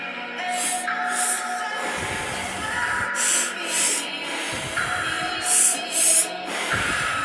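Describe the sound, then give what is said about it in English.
Quick, forceful breaths come in rhythmic pairs, like sharp huffs through the nose, repeating every couple of seconds over a soft, sustained musical drone; conscious breathing worked from the lower belly. “By working with your lower belly and its energy through conscious breathing, you are encouraging your ego to relax.”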